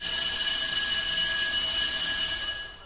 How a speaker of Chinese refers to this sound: 好了，打铃了，快去上课吧。